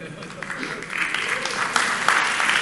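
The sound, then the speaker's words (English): An audience claps steadily throughout, a dense wash of many hands that swells slightly louder toward the end, with faint voices mixed into the crowd. “You know, I'm not one to ask you to clap, so...”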